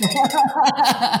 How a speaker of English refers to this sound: Hold on. I got to ring my sales bell for that.